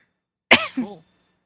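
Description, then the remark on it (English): A single fairly loud cough with a sharp breathy burst followed by a shorter voiced tail, isolated against silence. “That cough there was a little bit.”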